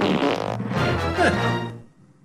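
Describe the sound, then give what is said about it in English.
A loud, drawn-out fart sound effect, starting with a rapid sputtering flutter and then stretching into a buzzy, wavering low tone that cuts off after almost two seconds, leaving a faint hum. “Now that's what I call a bowel movement.”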